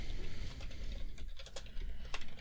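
Rapid, forceful, angry clacking of computer keyboard keys as someone types to look something up online, a dense burst of sharp keystrokes tapping away, with no talking.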